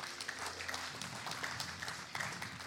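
An audience claps together in a steady, dense wash of applause that holds for a few seconds without letting up. The clapping is fairly soft overall, and no one speaks over it.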